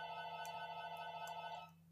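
A cell phone rings with a steady, buzzy electronic tone that holds for nearly two seconds before cutting off; fairly quiet, with no one talking over it.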